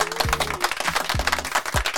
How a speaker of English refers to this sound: And the answer was Ralph Bunch. Everybody give a round of applause for Ralph Bunch.